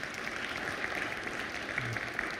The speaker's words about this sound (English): And yes, that's not any small feat, and it's worthy of your applause, 2,190 miles.